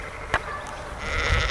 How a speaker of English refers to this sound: Oh dear, it's not happy because of all the lamb talk. Don't worry, sheep